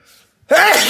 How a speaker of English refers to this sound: I'm about to sneeze.